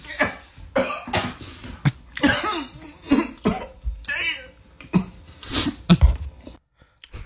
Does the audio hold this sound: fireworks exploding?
no